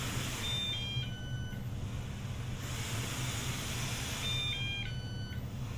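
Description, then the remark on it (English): A robot vacuum plays two short runs of electronic beeps, each a quick rising-and-falling little melody of several tones, separated by a pause, over a steady low motor hum. “That was a fun beep.”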